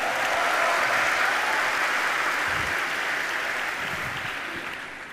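Steady audience applause for an audience member about to ask the first question fills the whole stretch, a dense wash of many hands clapping at once, loud at first and tapering slightly toward the end, with no voices standing out.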